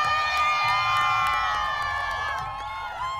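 A large crowd lining the route of the Boston Pride Parade through Back Bay and the South End to Boston Common cheers and whoops continuously, a dense wash of many high-pitched voices and shouts sustained at a steady, loud level before easing slightly toward the end.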